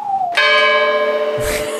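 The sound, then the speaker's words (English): A single loud bell strike rings out, its bright overtones sustaining steadily, preceded by a short falling tone and interrupted late by a brief muffled thump. “Is this a bell and whistle you have today?”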